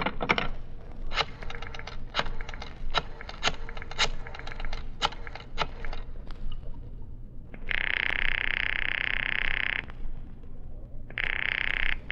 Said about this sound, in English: The telephone book. Listen, Mr. Avery. The sound of the flipping of pages.